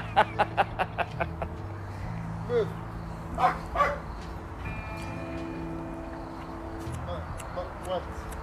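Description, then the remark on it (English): Dogs bark: a quick run of sharp, high yaps at the start, then a few louder, separate barks, with a low hum and faint muffled voices in the background. “These dogs are...”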